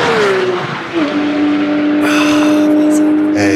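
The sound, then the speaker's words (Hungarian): A loud, high-revving truck engine roars, its whining pitch dropping sharply as the truck sweeps past at high speed, then holding a steady, droning tone to the end. “Egy nagyon gyors kamion.”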